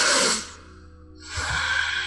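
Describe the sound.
A voice imitates someone deeply sniffing a halberd brought up to his face: two long breathy inhalations through the nose, fairly loud, separated by a brief pause, with no speech.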